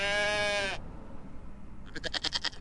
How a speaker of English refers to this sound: Now, Rudolph, be a good goat, will ya? Now, come on. What's he stopping for?